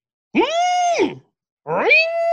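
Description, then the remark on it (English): A voice imitates sport motorcycles (crotch rockets) doing tricks and racing down Calhoun Drive on the University of Cincinnati campus, with two loud, buzzy vocal revs, each sweeping up in pitch, holding steady, then dropping, separated by a short pause. “As I call them, the crotch rockets.”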